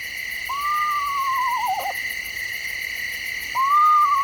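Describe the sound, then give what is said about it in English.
An eastern screech owl gives a descending, quavering whinny that trails into a tremble, then starts again about two seconds later, recorded by Lang Elliott of Nature Sound Studios. A steady chorus of night insects buzzes in the background. “You might say the eastern screech owl lives up to its name, with its range of calls, including the whinny.”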